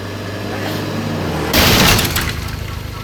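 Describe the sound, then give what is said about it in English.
A car engine rumbles steadily for a moment, then a loud crash bursts out as the car smashes through a loading dock gate, followed by rattling, clattering debris while the engine keeps running. “You drove your car through the loading dock gate and pried the back door open with a crowbar?”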